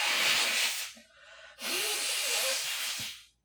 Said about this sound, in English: And I'm gonna blow my nose. Okay. If you don't mind. No, go ahead.